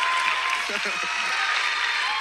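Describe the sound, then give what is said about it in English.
Steady audience applause at an evening baptism service fills the whole moment, a dense wash of many hands clapping at constant loudness for a woman being baptized, with a brief murmur of a voice faintly underneath. “Can we give her a round of applause, amen?”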